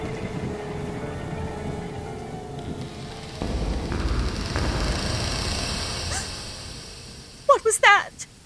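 A steady storm with rain hisses throughout, growing heavier and louder about halfway through, with a few short, sharp bursts of sound breaking in near the end.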